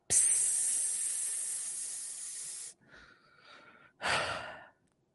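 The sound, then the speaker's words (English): Air hisses out of a punctured inflatable that was being pumped up: a loud, steady, bright hiss lasting a few seconds, then a softer, wavering hiss, and finally one short, sharp burst. No one speaks. “Oh, shit, she's got a puncture.”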